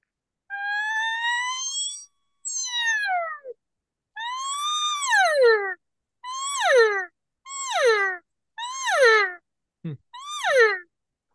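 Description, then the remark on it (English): An elk cow call made by hissing air through a reed: about seven loud, nasal mews with no talking. The first few are long and siren-like, then they shorten into quick rising-and-falling chirps, the basic cow mew. “Just start shortening it up and you'll get more into your cow sound.”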